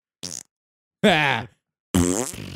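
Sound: fart sound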